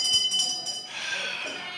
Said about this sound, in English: There's the shame bell.